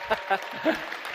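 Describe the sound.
A church audience at Kensington Church applauds a new student ministries director in a steady wash of clapping, with a few brief shouts or cheering voices rising above it during the short burst.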